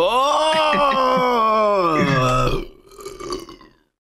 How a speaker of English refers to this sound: Yeah, that burp was for you.